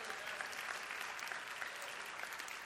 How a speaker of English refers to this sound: Give the Lord a hand clap if you would.